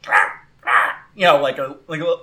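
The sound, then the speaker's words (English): A voice imitates the happy little chirps of Sparkle, an Arctozolt Pokémon: four quick, yappy calls in a row, the first two breathy and the last two more tonal with rising and falling squeaky pitch. “Those little happy dinosaur noises.”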